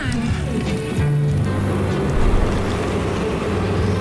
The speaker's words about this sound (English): Peeling shrimps. That's pretty cool. Peeling shrimp automatically for him on his boat.